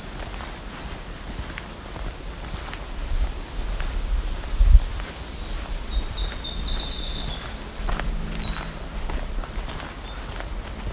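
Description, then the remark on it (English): A black-throated green warbler sings a few high, buzzy phrases, spaced apart over a steady outdoor background with faint rustling and footsteps. “Another black-throated green warbler making that song.”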